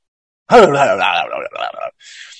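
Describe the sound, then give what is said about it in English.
A voice imitates the dying last gasp of Bud Dwyer: a loud, strained, wavering groan that breaks into a few choked pieces and fades into a soft, breathy exhale. “No, that was the last words of Bud Dwyer as he strung out on the floor for his last gasp of dying air.”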